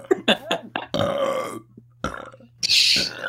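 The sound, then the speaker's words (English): A person lets out a run of loud, croaking belches, a few short gulping bursts followed by longer rasping ones, the last the loudest and harshest. “Oprah fucking belching like a dude.”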